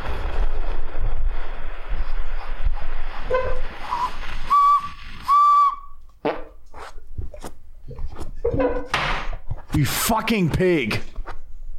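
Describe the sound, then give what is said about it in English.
A recorder is blown with fart air, giving a couple of short, thin, squeaky whistle notes amid breathy rustling noise, followed by people talking and laughing. “Attempting To Play Recorder With Fart”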